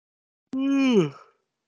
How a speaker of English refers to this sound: Oh god, I'm sorry. No, I just yawned myself, and I'm not watching or hearing you, and I just, bam, so we yawned at the same time.